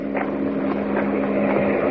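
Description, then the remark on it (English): A car's engine drones steadily as it comes up the road, a low humming tone with a rough, rumbling texture that holds at a fairly constant level for about two seconds, with no voices. “It's a car coming up the road.”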